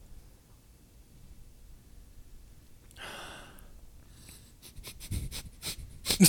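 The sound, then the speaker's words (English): A person sniffs a drink: one longer inhale, then a quick series of short, sharp sniffs growing louder, with no talking. “The sniffer sniffing.”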